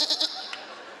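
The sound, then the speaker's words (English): A short, wavering bleat, like someone imitating a sheep, sounding nasal and slightly shaky, over a thin hiss and soft background noise. “It's like herding drunk, retarded sheep.”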